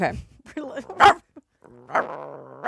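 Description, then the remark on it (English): A person imitates a dog, making a few gruff bark-like yelps with one loud sharp bark, then a longer whining, howl-like vocal note, all fairly loud. “So this is my dog bark.”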